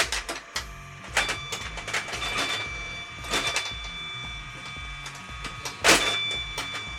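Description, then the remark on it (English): A pinball machine, turned on at the top and playing a single ball with no multi-ball option, launches its ball with a sharp mechanical clack after it is pulled back, then keeps buzzing with a steady high electronic tone and flashing lights under scattered rattles and a few louder bursts of clattering. “Right, pull it back and it's all yours to go. It's off, it's buzzing ahead.”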